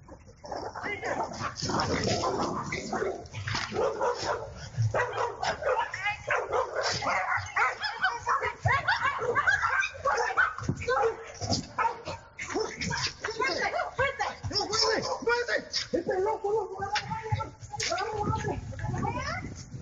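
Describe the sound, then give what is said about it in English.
Several dogs bark and yip frantically and loudly in a nonstop chaotic barrage for about twenty seconds, with people's voices mixed into the commotion, as a teenage girl protects her dogs. “Maybe we should protect our sheep kind of like this teenage girl protected her dogs.”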